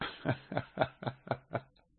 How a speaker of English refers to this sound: Here's that Corona cough.